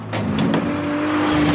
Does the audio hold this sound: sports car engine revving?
yes